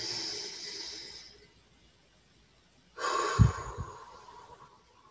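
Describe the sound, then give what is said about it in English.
A slow, deep breath drawn in, a short pause of near silence, then a fuller breath released with a soft low rush, alone with no talking. “So I want to pause for a moment and just have a breath.”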